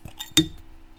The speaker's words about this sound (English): Nice. Anticlimactic. That sounded good because you heard the clink. Yeah, you heard the clink, and it was good.